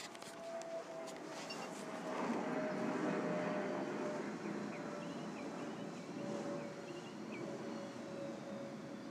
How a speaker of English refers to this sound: Hold on. First, let's hear the airplane.